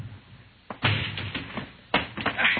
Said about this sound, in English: All right, Juan. Break down the door.